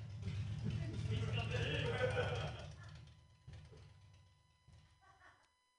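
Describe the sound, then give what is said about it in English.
A motorcycle engine roars past outside, a heavy low rumble that is loudest at first and then fades away over a few seconds, leaving quieter murmuring voices. “That's not what I wanted to talk about, but I don't know. It just got my attention.”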